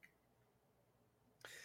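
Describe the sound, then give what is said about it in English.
After a stretch of near silence, one sudden, loud sneeze bursts out at the very end, a sharp, breathy, noisy blast with no talking around it. “Bless you.”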